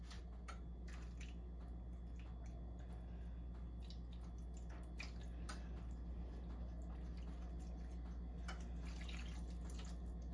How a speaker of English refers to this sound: And I've got juice of 2 lemons. Pour that in.